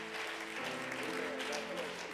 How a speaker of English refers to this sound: Let's receive him with a warm hand clap of welcome.